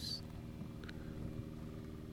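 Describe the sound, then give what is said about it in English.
A helicopter drones steadily overhead, a low, even rumble with a humming engine tone that holds for a couple of seconds, fairly faint and with no talking. “Helicopter after us.”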